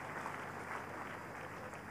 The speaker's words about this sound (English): I really thank God. Let's clap for Jesus Christ.